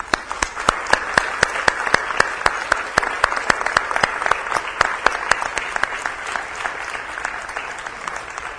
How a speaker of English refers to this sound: All of the dads that are here, please stand. Let's show our appreciation to them just with a round of applause.